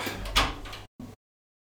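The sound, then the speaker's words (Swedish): A door swings open with a broad, rushing scrape lasting under a second, letting in a dog that had been scratching at it, then a brief second knock or thud before silence. Fairly loud, with no voices. “Och en hund som står och krafsar på dörren. Ja, men släpp in honom.”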